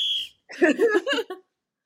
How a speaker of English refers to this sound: I'm blowing the whistle on myself twice. I said time and fast.